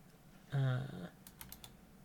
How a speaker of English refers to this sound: One second. I'll just have to excuse my typing.